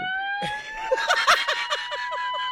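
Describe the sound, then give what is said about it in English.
An ambulance siren wails steadily with a high, rapid warbling pattern, loud, sounding on its own without any talking over it. “Now would be a good time to call the fucking ambulance.”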